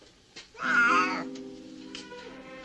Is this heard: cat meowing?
yes